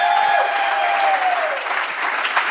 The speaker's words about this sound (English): And then, as we mentioned to the crowd before we turned on the recording, we are here at Cornerstone Church in Atlanta. So can we give it up for Cornerstone Church?